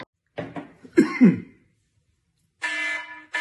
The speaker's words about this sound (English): Warning, a cough has been detected.